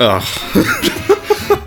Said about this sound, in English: Oh my god. What the fuck? I'm dying. Sorry, everybody. I'm still dealing with that cough.